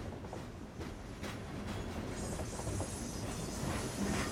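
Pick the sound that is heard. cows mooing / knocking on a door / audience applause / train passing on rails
train passing on rails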